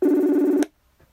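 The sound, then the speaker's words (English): A single loud ringback tone from a phone placing a call back to someone, a steady buzzing purr lasting just over half a second before cutting off abruptly into near silence. “That's the ringing.”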